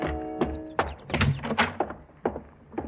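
Dr. Birdwell's cottage door, reached by a walk through his rose garden, opens and shuts with a string of solid wooden thunks and a faint creak, the knocks and rattles coming irregularly over a few seconds with no one speaking.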